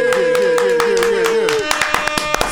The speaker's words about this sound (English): So let's clap it up one time for my guy